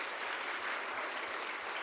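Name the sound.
audience round of applause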